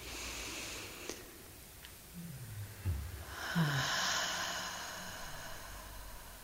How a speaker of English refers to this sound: Let's do that one deliberately together. Breathing in with the torso, with a deliberate breath.